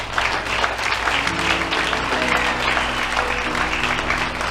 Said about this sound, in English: Come on, clap your hands.